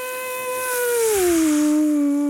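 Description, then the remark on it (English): A voice imitates an F1 car engine with one sustained, buzzy whine that starts fairly high, glides down in pitch midway, then holds a lower steady tone, loud and alone. “That's not high enough for an F1 car, I'm afraid.”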